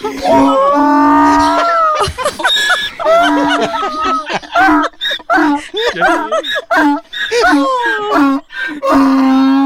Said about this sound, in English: Oh, the donkey's so happy to see him.